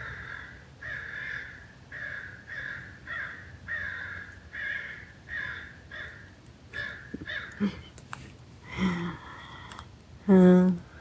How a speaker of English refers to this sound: The crows want the last word today.